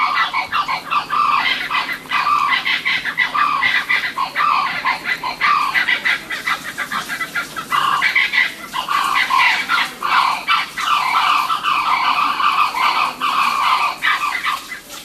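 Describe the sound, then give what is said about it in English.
Blue-winged kookaburras call just after sundown in a tree nearby at the Mount Isa Caravan Park, a loud, continuous chorus of harsh, cackling, squawking bursts that overlap and rise and fall in waves for the whole stretch, with no talking. “Oh, it's blue-winged kookaburras.”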